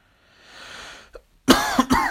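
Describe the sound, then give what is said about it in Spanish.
A soft inhale and a short catch, then a loud burst of two or three harsh coughs in quick succession from one person who is ill. “Y también estoy tosiendo porque también estoy enfermo a la par.”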